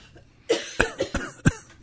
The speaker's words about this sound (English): I had to cough.